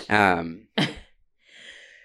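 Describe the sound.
A single sneeze: a drawn-out voiced 'ah' builds into a sharp, explosive burst, then trails off into a soft breathy exhale.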